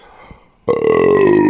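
A loud belch from the sternum, attributed to Jets fast food pizza delivery in Memphis, erupts abruptly after a brief quiet moment and rumbles on with a sustained, throaty, tonal drone until the end.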